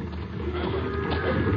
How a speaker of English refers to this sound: Last the herd was being driven into the stock pens near the railroad siding when we reached the south end of the ranch.